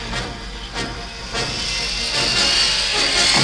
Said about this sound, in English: The Falcon accelerates into space, but now Luke and Leia must fight off attacking Imperial fighters.